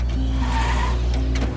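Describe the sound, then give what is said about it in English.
An Atomic Age automobile's engine roars steadily with a low rumble, tires squealing briefly as the vehicle speeds off, loud and continuous throughout with no voices. “As the Atomic Age automobile races away, the disappointed domestic sighs.”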